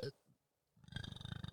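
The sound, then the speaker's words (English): A short, soft burst at the start, then a pause before a low, rumbling burp after drinking seltzer that rolls on for nearly a second with a rough, pulsing texture. “A little seltzer kiss there.”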